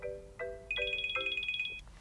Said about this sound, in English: So before that, oh, I'll get another phone call, and that's wonderful.